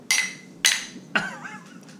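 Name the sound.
glasses clinking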